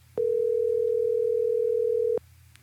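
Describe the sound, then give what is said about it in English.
A single steady telephone ringing tone of a phone call being placed to a friend sounds for about two seconds, loud and even, then cuts off abruptly, leaving only a faint low hum. No one speaks. “We'll just keep calling him until he picks up.”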